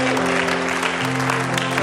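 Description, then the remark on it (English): An audience claps steadily in praise of the Lord at a morning service, a dense, continuous wash of applause, with sustained organ-like tones holding underneath throughout. “Can you give the Lord a hand praise? Hand clap of praise this morning.”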